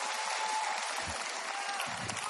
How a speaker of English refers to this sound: Oh, come on. Give God a hand clap of praise and you can take your seat.